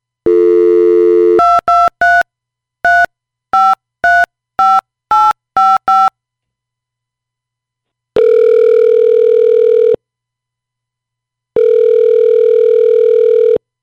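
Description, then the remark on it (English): A phone dial tone hums, then a quick run of about ten touch-tone beeps as a number is dialed, followed by two long ringback tones separated by silence. No one speaks. “We got our phone number here. Let's call her.”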